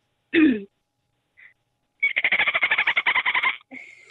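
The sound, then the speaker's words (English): A voice imitates a dolphin: a short squeaky burst, a faint chirp, then a rapid, even train of high-pitched clicking squeals lasting over a second, ending in a thin whistle. “I can do quite a few, but I can do a dolphin pretty good.”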